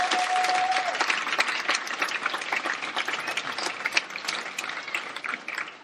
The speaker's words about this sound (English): Such a great job. So if you could just believe it, a round of applause, that would be great.